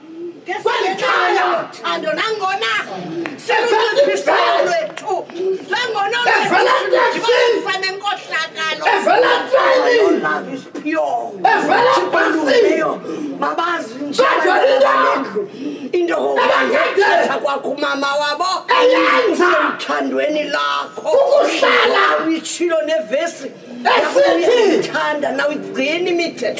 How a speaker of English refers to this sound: Every time if they pray, they're shouting, yo.